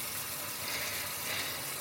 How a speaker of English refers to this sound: I'm filling the watering can now. Just so you know, if you can, in case you thought maybe I was just having, like, what do they call it at the BBC? A comfort break.